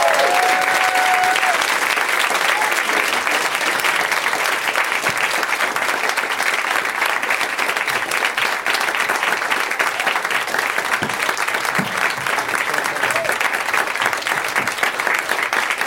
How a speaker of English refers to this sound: I love you guys because the longer it takes them to come out and get in their seats, the longer you clap, and it just seems insanely enthusiastic.